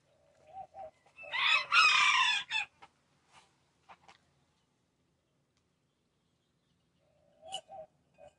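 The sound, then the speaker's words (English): A few short clucks from the speaker's own egg-laying chickens, then a loud, harsh crowing burst from a rooster, followed by scattered quiet clucks and a final pair of clucks after a pause. “Mix that with eggs from my chickies.”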